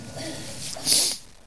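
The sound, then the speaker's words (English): A preacher gives a single quick sniffle during a sermon, a short breathy hiss of air drawn through the nose, following a faint low murmur and then trailing into near silence. “You might hear me sniffle a little bit.”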